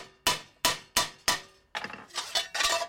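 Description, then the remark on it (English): A hammer strikes metal being bent into a bell in a bending die four times in a steady rhythm, each blow sharp with a short ringing decay, followed by a quicker, overlapping flurry of clanging hits. Loud, with no voices. “Now what you need is we use the hammer. We got this here.”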